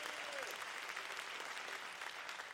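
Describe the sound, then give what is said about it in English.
A church audience, urged to give Jesus a big round of applause, breaks into sustained, dense applause, many hands clapping steadily at an even loudness for the whole stretch with no voices standing out. “Come on, give Jesus a big round of applause.”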